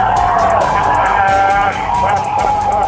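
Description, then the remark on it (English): A large crowd roars and cheers continuously as people tip a police car over onto the police car beside it, many voices shouting together in a dense, loud wall of sound that stays steady throughout, with a low rumble underneath. “Oh, they're tipping it over. They're tipping over one of the police cars, and they're cheering. Listen to the crowd.”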